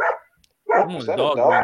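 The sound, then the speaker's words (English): A dog barks excitedly: one short yelp, a brief pause, then a loud, continuous run of high, wavering barks and whiny yips. “Whose dog is going crazy right now?”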